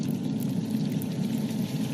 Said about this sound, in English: Literally, it's just rain. Actually, it's actually just rain. Right, just it's just rain.